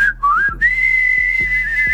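A person whistles a sustained, wavering tone that dips and then holds steady, loud, with a low background hum and faint rhythmic thumps underneath.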